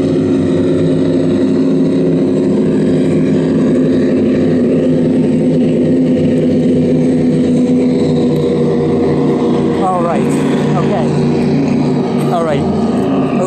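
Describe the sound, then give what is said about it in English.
Several motorboats pass by, their engines a loud, steady low drone that holds throughout, with a few brief higher chirps near the end. “there's another boat passing by. No, two more, hold on. Some boats passing by.”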